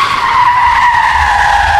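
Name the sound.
car tires screeching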